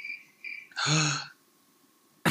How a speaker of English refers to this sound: Oh, how am I going to live in the summer now? Because that kind of gave me chills. Hearing the crickets.